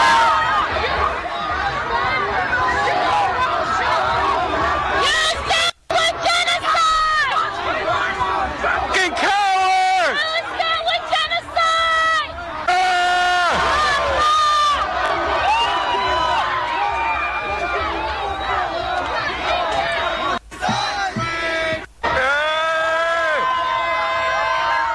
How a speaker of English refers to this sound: trying to tear down the gate of the White House, screaming at the Secret Service that they're bleeping cowards, and then screaming Allahu Akbar